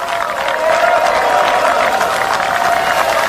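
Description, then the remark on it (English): Sustained applause from troops on both sides of the trenches at Christmas, dense steady clapping with some faint cheering mixed in, fairly loud and continuous throughout without any clear speech. “Somebody shoots off some fireworks. And both sides are clapping.”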